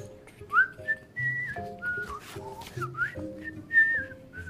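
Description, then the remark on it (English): Someone whistles a jaunty marching walking tune, bright sliding notes rising and falling in short phrases, with a soft low accompaniment humming underneath and no talking. “"Like my finding you," the bone answered, and it began to whistle a walking tune that made the going very pleasant.”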